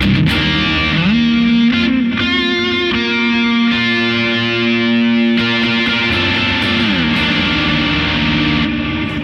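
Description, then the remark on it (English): A heavily overdriven electric guitar, played through a Noble Screamer pedal with Halo and Echoes pedals added, plays sustained, saturated notes and bends, thick and gritty with a fuzzy, compressed edge, loud with no talking. “Just to give you that recap, that's a Noble Screamer. Add the Halo.”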